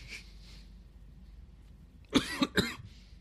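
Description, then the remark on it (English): A burst of three harsh coughs in quick succession, loud and raspy, after a couple of seconds of quiet background noise with faint breathy sounds. “Still coughing.”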